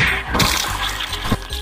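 A heavy punch lands with a loud smashing crash, followed by a second sharp hit and a noisy, rattling clatter, like something breaking apart. No one speaks.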